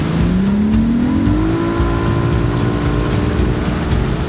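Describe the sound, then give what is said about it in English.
A motorboat engine roars steadily, its pitch climbing as it speeds up, then holding a loud, even drone over a constant rush of wind and churning water as the boat travels through choppy water up a reservoir's main channel between canyon walls. “As we boated up the reservoir's main channel, the white bathtub ring on the canyon walls loomed over our heads.”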